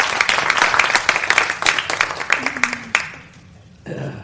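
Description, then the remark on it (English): A crowd applauds with dense, crackling claps for about three seconds, a cheer or two mixed in, then the clapping fades out and a voice begins speaking. “If you stand, could we give these guys a round of applause?”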